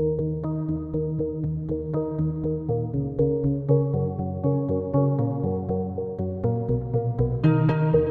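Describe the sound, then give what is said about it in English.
Short, irregular piano plinks tap out a Morse-code-like pattern, played randomly to accent beats, with delay-effect echoing repeats over a warm sustained instrumental bed, ending with a couple of bright staccato stabs signaling the end of the loop. “Next, I added a Morse code-like piano sound to accent some of the beats, again played pretty randomly.”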